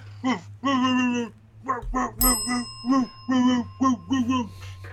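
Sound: person imitating a dog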